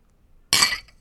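A single bright, sharp clink of glasses touching in a toast, ringing briefly before fading out after a moment of near silence.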